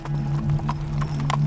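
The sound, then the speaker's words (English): Hooves of a horse pulling a horse-drawn funeral hearse clip-clop at an even, unhurried pace, several crisp strikes over a steady low hum, with no one speaking. “So quickly, in fact, that the horse-drawn funeral hearse was already waiting outside.”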